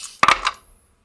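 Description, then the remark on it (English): Three dice are rolled and clatter onto a hard table, a quick burst of sharp clicks followed by a second rattle as they settle, fairly loud with no voices. “Three dice. I'm rolling them.”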